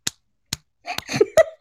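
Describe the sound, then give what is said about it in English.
Someone vocally imitates the wet, slapping flesh sounds heard in a film scene of a man lying in bed: two sharp isolated smacks, then a quicker burst of squelchy, smacking mouth noises with a brief voiced tone. “And then you just start hearing, like a the worst flesh sound of, like...”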